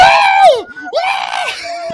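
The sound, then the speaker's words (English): Two loud, high-pitched excited screams from a duo of people, one rising and falling, then a second burst of shrieking, energetic like an enthusiastic greeting. “The fantastic duo, fabulous duo, and then we scream.”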